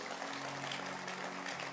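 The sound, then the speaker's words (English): An audience in church claps together for its leaders and pastors in a steady, dense wash of applause, many hands overlapping into a continuous crackling roar with no voices. “Oh, keep clapping. They deserve a real applause.”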